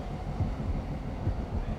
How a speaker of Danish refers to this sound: Se, der kommer lys fra den anden tunnel. Og det er nok personalet. Det er et metrotog. Se. Nå, så har de fået systemet op at køre igen. Det sænker farten. Se, det standser lige ud foran os.